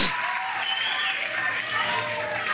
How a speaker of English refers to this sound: Let me ask the crowd of everybody here, would you like to see the president run again in 2024? Big applause there. Big applause from his fans.